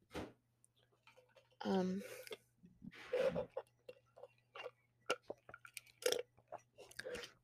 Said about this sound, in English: Sorry, just had to take a sip of water.